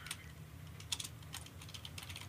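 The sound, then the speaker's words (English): Quick, irregular clicking of keys on a computer keyboard, fairly quiet, with uneven bursts of keystrokes over a low steady hum and no talking. “Okay, well now I hear you typing.”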